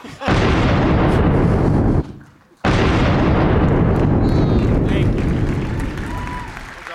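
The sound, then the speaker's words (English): A double cannon set off for two people: two loud, booming cannon blasts in quick succession, each a long roaring rumble; the first cuts off sharply and the second rolls on and slowly fades. “Let's get a double cannon going for the two of them.”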